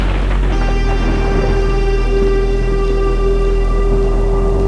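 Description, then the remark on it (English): A thunderstorm with lightning outside roars steadily, with dense rain hissing and a deep continuous rumble of thunder underneath, loud and unbroken throughout, with no voices. “Lightning lashes the clouds outside. Thunder rumbles, and I hear something.”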